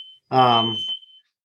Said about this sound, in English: Sorry, there's an alarm going off in my house.